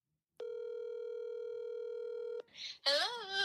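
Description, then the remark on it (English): A steady electronic telephone tone rings out for about two seconds, loud, then cuts off into a brief rustle before a voice starts speaking over the line as a phone call is placed. “So pause and I'm going to call her.”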